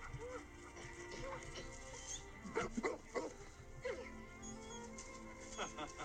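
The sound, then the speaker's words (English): An old dog barks and whimpers excitedly in a string of short, high yips and whines as he is reunited with his best friend, bursting out loudest near the middle, with indistinct voices murmuring underneath. “He was a puppy again, reunited with his best friend.”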